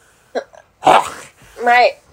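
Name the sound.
a sneeze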